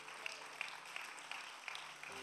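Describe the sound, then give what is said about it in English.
An audience applauds the CT Impact team in a dense, steady wash of clapping, with sharper accents about three times a second. It sounds lively and fairly loud, with no voices over it. “Let's give the CT Impact team and all of you guys a round of applause.”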